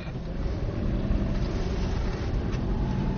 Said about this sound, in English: It could have been a lot worse. We just had a truck go by and splash in.